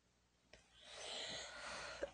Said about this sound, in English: Excuse me. Yes, I still have a cough. Yes, it is still allergies.